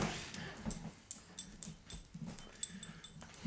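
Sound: dog whimpering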